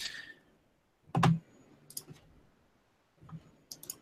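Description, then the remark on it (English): Several sharp mouse and keyboard clicks as someone switches browser tabs back to the Wayback Machine, a loud cluster of clicks followed by a few lighter taps spaced irregularly, with no talking and quiet in between. “This opened in a new tab. So I'm clicking back on the wrong one.”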